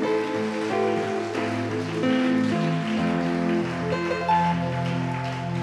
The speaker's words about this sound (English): Let's give the Lord a bigger clap offering.